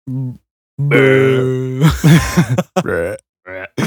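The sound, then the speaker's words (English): A long, low, guttural burp drawn out like a Minecraft zombie's groan, followed by a few shorter croaking, grunting bursts with brief gaps between them. “Very much sound like a Minecraft zombie noise.”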